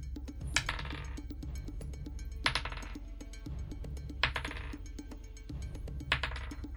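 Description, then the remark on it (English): Handfuls of dice are rolled four times in a row for damage in a tabletop game, each roll a bright, rattling clatter of many small hard pieces tumbling together, fairly loud, with no one talking. “Oh, that's a lot of dice rolls.”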